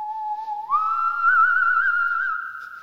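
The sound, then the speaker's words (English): A clear whistle mimicking a whistling nose: one sustained note that slides up to a higher pitch and holds there with a slight waver, then fades, with no talking. “Do you know, it wasn't your nose that was whistling the most, it was my own.”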